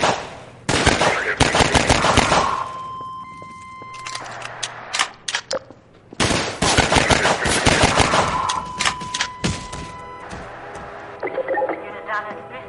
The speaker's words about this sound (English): It's that flatline beep. Oh, it sounds like someone picked up the phone when I was trying to connect to AOL and my modem had to try to reconnect.